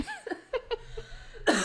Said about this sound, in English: That put her in a coughing fit.